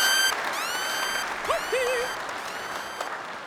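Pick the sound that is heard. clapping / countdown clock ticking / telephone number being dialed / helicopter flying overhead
clapping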